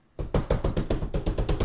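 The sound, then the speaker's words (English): Rapid, steady knocking on a door, about nine or ten quick raps in an even rhythm, moderately loud, with no voices. “One time she knocked on my door.”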